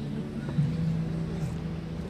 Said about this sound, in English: We got a motorcycle here. I don't know what song he listening to. He got a green. He finna pull off. Let's let him pull off or we keep going.